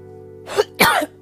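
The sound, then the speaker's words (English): Two harsh coughs in quick succession, the second louder and longer, over a faint steady background hum with no talking. “I'm like coughing up a storm.”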